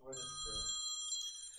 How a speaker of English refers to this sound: Our phone lines are freaking buzzing.